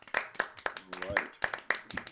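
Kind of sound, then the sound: crowd, clapping applause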